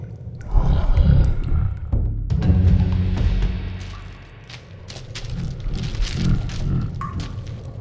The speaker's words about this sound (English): Wait, I think that tunnel is breathing. Ew! The worm must be in there. But it sounds like she's sleeping.